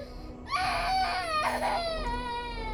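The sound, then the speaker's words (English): A child screams and cries on a subway train in loud, high-pitched wails that waver and slide downward, with a short catch before another sustained wail, over a steady low hum. “Not where the screaming child is, not where the man is taking up 3 seats at once, and not where the woman is coughing and sneezing without covering her mouth.”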